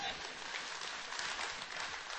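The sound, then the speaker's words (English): An audience applauds in a steady, dense wash of many hands clapping, sustained at an even level for a couple of seconds with no voices standing out. “But understand, okay, go ahead and applaud.”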